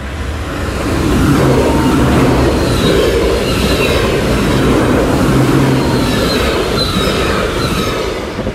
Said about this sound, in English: Oh, yeah, there's definitely another train coming. Is that a train, or what is that? Oh, yeah, that's an even faster train. It's an intercity train.